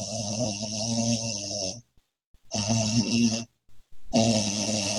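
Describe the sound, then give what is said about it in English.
A voice imitates snoring in three drawn-out, raspy bursts separated by short pauses, fairly loud, with no other talk. “Like literally, he'll be snoring.”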